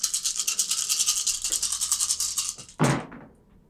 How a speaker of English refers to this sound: I rolled a lot of dice. And came up with shit. So that's a 1 on a hunger die and a 1 on a regular die. And a 6. Everything else is 5 or less.